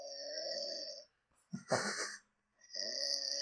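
Heavy, rasping snores from a sleeping man who cannot breathe through his nose when lying down, loud: a long harsh inhale, a brief pause, a sputtering snort, another pause, then the rattling snore resumes.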